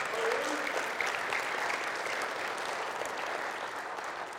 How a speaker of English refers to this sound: So give them a big round of applause.